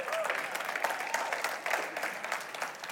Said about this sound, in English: That's a good place to clap.